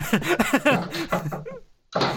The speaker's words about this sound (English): Oh. Comedy door slam.